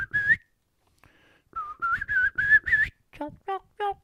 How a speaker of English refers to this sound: In the fall, you're going to hear Kiki run, which is a young poult whistling back to the group. Because once you break up the flock, they've been together for weeks, months, all summer long. They want to get back together as a group, and you'll hear.